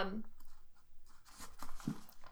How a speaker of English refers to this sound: Sorry, hold on. I was crinkling a piece of paper while I was talking, which is a crime.